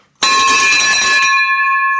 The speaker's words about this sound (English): Get ready for the listening. We go for the victory bell.